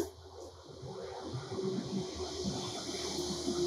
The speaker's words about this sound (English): Here comes the train.